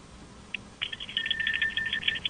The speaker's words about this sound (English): Oh, you're ringing the bell? Yes. There's your bell. There you are.